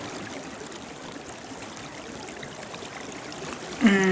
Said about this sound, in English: He was very into fishing, but it was not only the fishing, it was the element of running water, the sounds of running water, and the smells of running water.